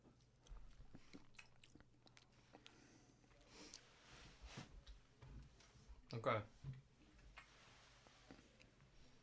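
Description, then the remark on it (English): Wet chewing and small crunchy bites of an olive, the sixth one eaten, repeat irregularly, with soft clicks of the mouth and one louder burst of mastication near the end; no talking, just quiet room tone behind. “Is such a full-on thing to have got through six olives. This is my sixth olive.”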